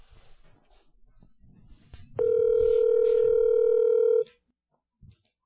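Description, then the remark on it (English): An outgoing phone call, placed a second time, rings: a single loud, steady ringback tone with a mid-pitched buzzy hum lasts about two seconds, preceded by faint rustling and followed by a soft click. “All right, we're calling again.”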